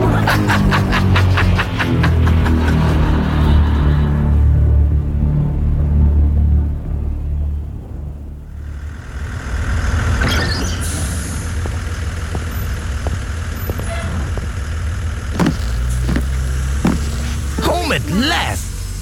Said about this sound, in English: climbing her front steps as the school bus rumbled away.